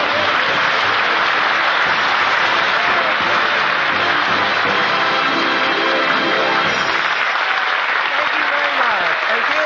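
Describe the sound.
Sustained applause from the cast of the Red Skelton program fills the whole stretch, a dense, steady patter of clapping with faint voices mixed in beneath it.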